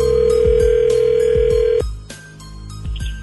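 A steady, single-pitched telephone tone hums loudly for almost two seconds, then cuts off with a click into quiet line hiss, like a phone call connecting on line two. No one speaks.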